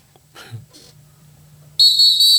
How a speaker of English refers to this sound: Golly. That whistle blew my eardrum out this week.